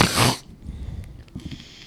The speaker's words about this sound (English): Making fun of me for sniffling?